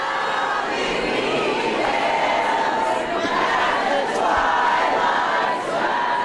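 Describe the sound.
A rowdy crowd at a board meeting over critical race theory roars steadily, many voices booing, chanting and singing over one another in a dense, loud wash of shouting that never lets up.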